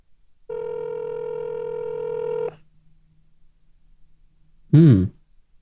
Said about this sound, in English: Which is indefinitely ring forever, doesn't it? Yeah, I think it's just the line will keep ringing.